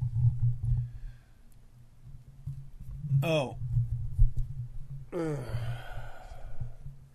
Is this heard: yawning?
yes